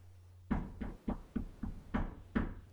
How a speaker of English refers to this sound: Yep. He was knocking on the door of the room that I was in for the length of that conversation.